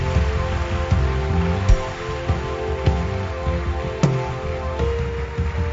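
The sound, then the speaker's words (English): A church audience claps their hands for Jesus in a dense, steady patter of many hands, with sharper accents every second or so, over sustained musical tones and no talking. “Your hand clap is very weak.”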